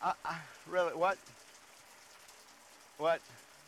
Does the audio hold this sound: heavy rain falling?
yes